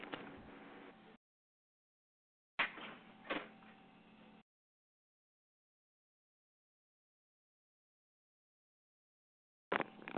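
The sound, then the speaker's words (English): A door is opened for a guest, with short bursts of rattling and handling noise separated by stretches of silence; no one speaks. “I have to open the door for my guest.”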